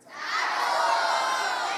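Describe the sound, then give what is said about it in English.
An audience yells out all at once what a symbol shown to them is, many voices shouting together in a loud, sustained burst that swells in quickly and holds steady for a couple of seconds. “And I want you to just yell out what it is.”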